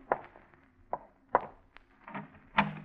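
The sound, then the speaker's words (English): A French door being opened at 4 a.m., with a few soft clunks and rattles of the latch and frame spaced unevenly over a few seconds, moderately quiet. “Let me in the French door.”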